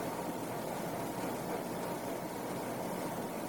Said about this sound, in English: The air conditioning is making a sound.